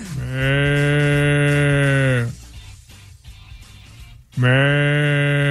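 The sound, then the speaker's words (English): A person imitates a water buffalo with two long, loud, low bellowing moos. The first lasts about two seconds, then a pause, and the second call begins and is cut off. “Water buffaloes are coming from all over the land.”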